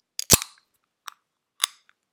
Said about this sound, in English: I'm getting quite thirsty, so I'm going to crack into the first beer we're drinking, which is Nakota, a Session Pale.